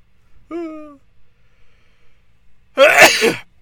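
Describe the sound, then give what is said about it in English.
A single loud sneeze: a short voiced, rising intake of breath, a brief pause, then a sharp explosive burst of noise that quickly fades. “My nose won't stop running. And I can't stop sneezing.”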